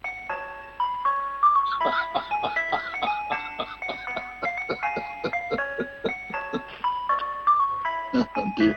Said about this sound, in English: Well, it'd make the kids stop yelling and start looking out the window to see where the ice cream van is, don't you reckon? It sure would, mate. It'd get kids running from all over the place.